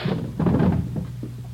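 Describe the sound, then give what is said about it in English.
A hotel room door, room 345 on the third floor, is unlatched and swung open, with a brief rattle and a couple of soft knocks over a low, steady background hum. “Open it up.”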